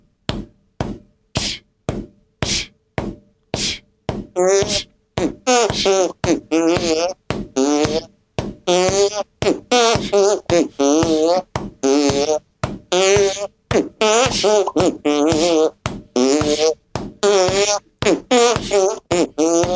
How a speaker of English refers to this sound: I can't really sing and fart at the same time.